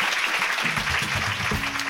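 Steady applause from a live comedy club audience at the Stand Comedy Club at the Edinburgh Fringe, a dense wash of clapping hands that stays loud and even throughout, with faint low voices and murmurs underneath.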